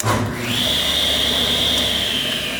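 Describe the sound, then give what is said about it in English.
A table saw blade spins up, its motor rising into a loud, steady high-pitched whine that holds level over a low rumbling hum, with no one speaking. “Has that wonderful whine, that blade is going.”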